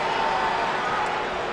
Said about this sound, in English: Listen to that crowd!